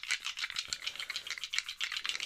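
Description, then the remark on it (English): Astrology dice, used for an astrology reading, rattle continuously for a couple of seconds, a rapid, bright clatter of small hard pieces tumbling together, fairly quiet and steady with no voices. “I will do all this using the astrology dice first, and then we'll dive a little bit deep, pull the energies using a tarot, take a little bit of a break, then get the advice from spirit, and that's how we will close the reading off, okay?”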